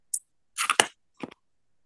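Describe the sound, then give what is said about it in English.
A Jaguar malt liquor container (8.3% alcohol) is cracked open: a brief high hiss, then a rasping fizz punctuated by a sharp snap, followed by a couple of quick crackling clicks. No one speaks. “I say, you ready to crack it open? Liquor de malt.”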